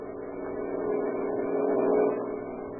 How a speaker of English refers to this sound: On the wide cement highway leading out of Olympia, Washington, two boys stand, thumbs pointed south in the familiar gesture of the hitchhiker, and watch the steady line of cars as they speed by.